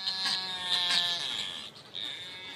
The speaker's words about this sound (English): That sort of surveillance should help scientists respond quickly if the virus reaches New Zealand and ensure birds like these albatross are heard in the wild and not just on the radio.